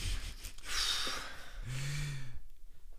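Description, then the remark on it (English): Wet sniffles and shaky, breathy inhales, with a short low whimpering tone in the middle, like someone snuffling while crying. No one speaks. “Stop sniffling your ear.”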